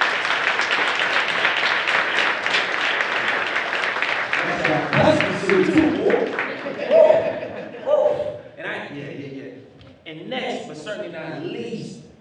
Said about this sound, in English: let's clap it up